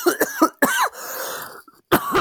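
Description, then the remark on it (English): A loud fit of coughing: several quick, harsh coughs in a row, a short breathy rasp, then one more cough after a brief pause. No one speaks. “Sorry, I'm just about to cough.”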